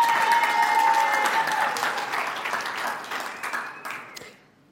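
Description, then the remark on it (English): A large crowd applauds steadily, a dense wash of many hands clapping at once that gradually thins out and fades away near the end, with a few last scattered claps. “I mean, we can clap it, but you know, I mean, but”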